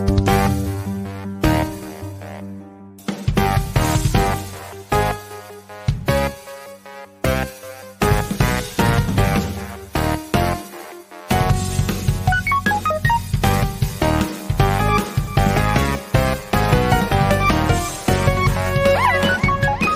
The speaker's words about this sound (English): Song that my buddy cut for us. That's actually version 3, but that's the best one. It's the coolest theme song we ever had. We're going to roll with that into the new year.